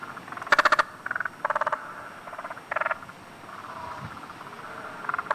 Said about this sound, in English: And then there's the spotted marsh frog, which we you find quite a lot of those around too, those little guys.